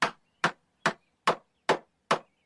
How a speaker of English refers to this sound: He's nailing something to our door.